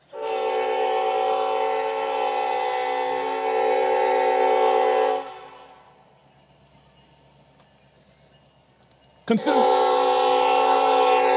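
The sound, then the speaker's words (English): A passing train's horn blares loudly for about five seconds, fades into a low rumbling lull, then abruptly sounds again just as loudly near the end. “This might not be a good thing to fight against the train.”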